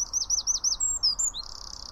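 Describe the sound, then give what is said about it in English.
A tiny bird sings a loud, very high-pitched phrase of rapid repeated chirping notes that ends in a sustained buzzy trill, with no voices over it. “And it's a really, really high-pitched noise, which makes sense for such a tiny little bird.”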